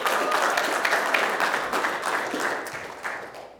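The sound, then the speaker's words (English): A church audience applauds and cheers for the worship team after a song, with dense, overlapping clapping and some cheering mixed in, staying loud throughout before tapering off slightly at the end. “Cheer for the worship team.”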